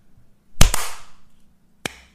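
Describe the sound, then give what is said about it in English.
A group tries to clap together on a count of three but lands out of sync: a loud cluster of sharp claps, a second smack right behind it, then one lone straggling clap a second later. “I just waited a random amount of time and I imagined that we were all going like this. I just Want to clapped.”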